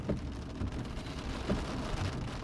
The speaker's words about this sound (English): Ooh, we got some rain. Okay. Got some rain ASMR this thing, going.